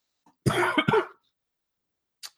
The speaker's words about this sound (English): I'm actually shocked. That's the first time I've coughed. Been dealing with a cough for the last few days, and I hate it. But I was actually shocked. That's the first one. Probably going to start a string of them now.